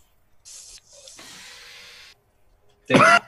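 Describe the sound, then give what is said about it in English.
A voice imitates airlock doors opening: a short breathy hiss, then a longer steady whooshing hiss, a pause, and a loud, brief rasping burst of noise at the end. “I mean, you can hear the doors as they kind of open.”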